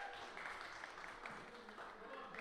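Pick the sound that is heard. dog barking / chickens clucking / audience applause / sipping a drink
audience applause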